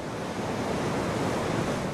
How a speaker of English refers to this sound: He's watching the Truckee River rush over Numana Dam, an irrigation diversion.